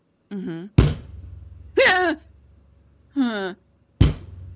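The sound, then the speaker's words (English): Three loud, sharp metallic bangs ring out, each followed by a low rumbling tail, with short vocal cries or calls sounding in the gaps between them. “But it's like a giant, like very loud, like metal kind of bang.”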